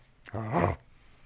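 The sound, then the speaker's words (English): A single dog bark, fairly loud, a drawn-out vocal yelp with a wavering pitch, followed by quiet room tone and no talking. “Okay, bark per rating number.”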